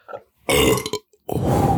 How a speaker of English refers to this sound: That was crisp. See, that was a crisp burp.